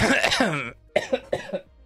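A strained, voiced throat sound gives way to a quick series of four sharp coughs in an uneven rhythm, fairly loud, with no talking.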